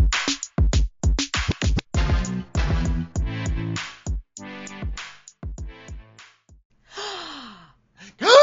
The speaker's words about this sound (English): Gasp. Gasp.